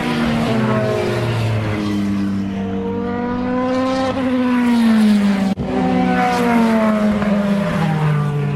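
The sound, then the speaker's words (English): A row of four or five LMP2 race cars roar past in quick succession, their loud engine notes rising and falling with overlapping Doppler sweeps, a continuous pass with no talking. “A row of, what, 4 or 5 LMP2 cars.”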